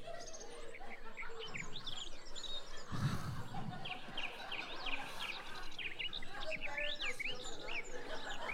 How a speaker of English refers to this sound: Fade the bird song, Gary. He's playing it.